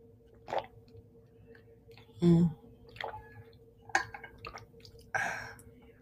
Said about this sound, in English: I'm going to take a little sip of water. So here's some ASMR for y'all.